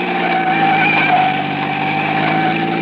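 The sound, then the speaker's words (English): A car engine drones steadily as the vehicle drives along a dark, lonely road at the mouth of Oro Canyon, a continuous hum with no change in pace and no voices. “And then we were at the mouth of Oro Canyon, and I could see the road dark and lonely up ahead.”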